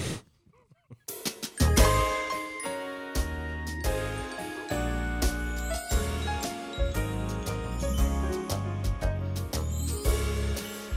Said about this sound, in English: All right, let me know. I'll hit the music.